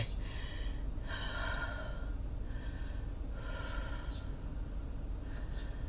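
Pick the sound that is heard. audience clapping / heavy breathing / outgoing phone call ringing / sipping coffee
heavy breathing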